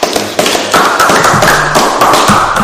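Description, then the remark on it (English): Loud, steady hand clapping fills the whole stretch, a dense run of sharp, rapid claps with no pauses and no voices. “Let's clap it up for y'all real quick, man.”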